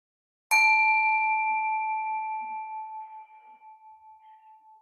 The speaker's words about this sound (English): And listening to the sound of the bell.